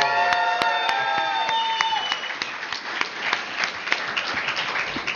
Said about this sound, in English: Thank you for attending this year's edition of the Parsecs. And one more time, let's hear a big round of applause to all of our winners!